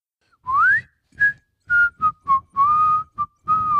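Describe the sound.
A whistled melody: a rising glide opens it, followed by a string of short notes and a couple of longer held tones, clear and fairly loud, with breathy puffs.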